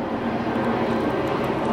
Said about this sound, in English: I'm gonna give this plane a second. Good Lord.